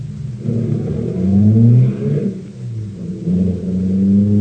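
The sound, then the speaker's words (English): A car engine revs up with rising, swelling tones, then the pitch climbs again as it accelerates away, loud throughout with a deep rumbling underneath. “I'll start the car.”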